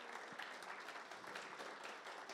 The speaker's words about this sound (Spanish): No, pero yo quiero un aplauso más fuerte que ese. Vamos a ver quién lo está aplaudiendo. Eso es.